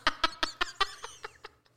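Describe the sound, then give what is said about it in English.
A female voice imitates an eagle-like screech: a quick series of about nine sharp, shrill, staccato cries that gradually fade and slow, loud at first. “We gave it to her, and she made this screech like an eagle.”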